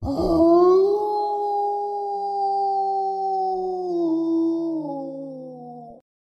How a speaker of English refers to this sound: Your body thuds to the ground, and the creature takes a piece of your face and releases a horrific howl.